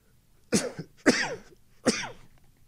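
Three sharp, explosive sneezes in quick succession, each a loud burst with a short voiced, falling tail, separated by brief pauses and with no talking.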